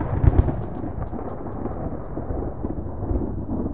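Deep thunder rumbles steadily throughout, with a heavier booming burst near the start and another toward the end, over a constant hiss of falling rain. No voices.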